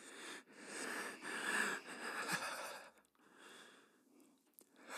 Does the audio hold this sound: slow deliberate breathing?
yes